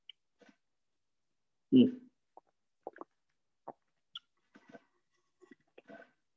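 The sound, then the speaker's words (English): Someone sips and swallows water: one fuller gulp early on, then a scatter of soft, wet mouth clicks and small swallowing noises, with no talking. “Oh, sorry if you guys can hear me swallowing.”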